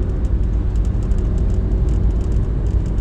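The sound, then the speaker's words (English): A steady, loud rumble of a car cruising northbound on Highway 99 a little before Merced as traffic builds, with constant low road and engine noise and faint hissing air, no voices and no pauses. “And as I'm just like driving alone, you know, trying to get home by at least 5:30, traffic's building.”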